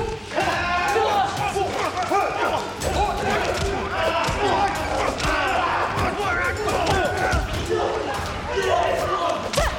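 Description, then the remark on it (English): Loud, continuous fighting sound effects taken from a video game and used by Foley artists: sharp punchy impacts and thuds packed together with shouted grunts and battle yells, dense and busy for the whole stretch. “They literally jacked those sound effects from a video game.”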